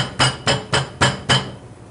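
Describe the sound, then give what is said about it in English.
Chicken breast and prosciutto pounded flat with five steady, evenly spaced thuds from a meat mallet, each a dull, solid whack about a quarter second apart, with no talking. “And then we're gonna put a slice of prosciutto on top. Okay. And we're gonna pound it out together.”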